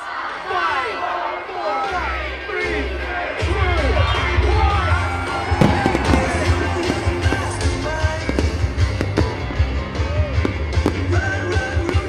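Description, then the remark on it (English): A large outdoor crowd at a city Christmas lights switch-on cheers and shouts continuously while scattered sharp bangs and a deep rumble of fireworks go off, with excited voices and whoops throughout. “We love our city, so it was lovely and a delight to see the fireworks, wasn't it, guys?”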